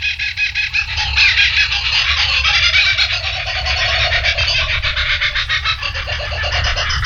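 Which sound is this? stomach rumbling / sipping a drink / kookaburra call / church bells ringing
kookaburra call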